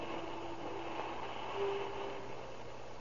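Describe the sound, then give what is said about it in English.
A steady low rumble of passenger train number 3 from Phoenix, Arizona, rolling slowly into the Southern Pacific Station on an October morning in 1931, with a faint metallic hum and a brief squeal of brakes midway, moderately loud and continuous, with no voices. “train number 3 rolls into the Southern Pacific Station from Phoenix, Arizona.”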